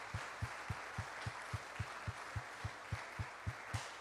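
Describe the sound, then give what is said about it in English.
An audience claps for all the moms in a dense, continuous wash of applause. A steady low thump, roughly three or four beats per second, pulses underneath. No one speaks. “Whatever season you're in, come on, let's give all our moms a hand clap.”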